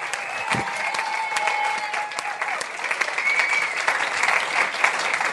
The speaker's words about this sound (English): And by the way, before we go, can we have a big round of applause for Gareth Reynolds, Matt Kershaw.